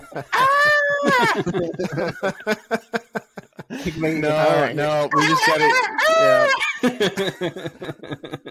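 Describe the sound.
A person imitates a screaming goat with loud, strained, wavering cries, broken up by a run of short chuckling bursts before the bleating resumes.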